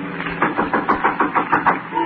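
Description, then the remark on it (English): A rapid, steady series of about nine firm knocks on a door, evenly spaced and fairly loud, with a low hum underneath and no voices. “Someone's at the door.”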